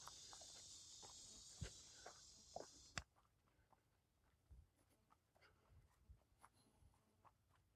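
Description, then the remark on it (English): Footsteps crunch and snap through woodland undergrowth, an uneven trail of steps and twig cracks, with a steady high insect buzz during the first few seconds. “could you walk more quiet?”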